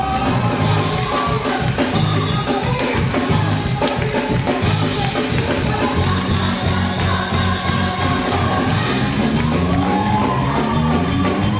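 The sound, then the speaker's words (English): A Japanese church praise break: loud, continuous shouting and yelling from a crowd over a driving, rhythmic beat, energetic and sustained for the whole stretch and full, with a woman starting to shout at the end. “That is the praise break. And she started shouting at the end.”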